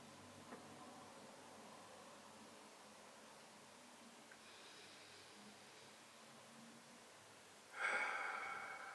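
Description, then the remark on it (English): Slow breathing during a calming breathing exercise: a soft, airy inhale fades in midway, followed after a pause by a louder, rushing exhale near the end, with no talking. “Breathe in and I breathe out.”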